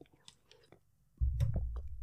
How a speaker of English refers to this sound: I'm going to grab a sip of water here.